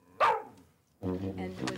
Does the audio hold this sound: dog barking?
yes